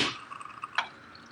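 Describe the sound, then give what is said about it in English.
A coffee machine drips liquid onto a counter: a wet splash at the start, then small ringing drips and one sharper splat, fairly quiet, with no voices. “Hold on, my coffee machine's peeing on the counter. You can hear it.”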